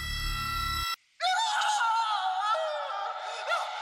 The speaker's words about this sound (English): I was awoken by a scream that might have come from me.